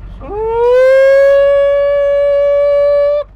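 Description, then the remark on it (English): Out in the fields, a man belts out a single loud call to the cows to come get feed, a rising whoop that levels into one long, steady, high-pitched held note for about three seconds before stopping abruptly. “His grandfather taught him how to call the cows.”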